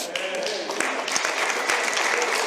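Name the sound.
audience clapping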